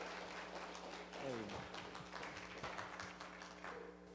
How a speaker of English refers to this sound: Well, let's give him a big round of applause.